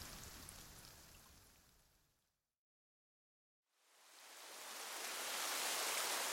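Steady hiss of rain at night fades out to a brief silence, then swells back louder and brighter, a dense wash of falling drops with no voices.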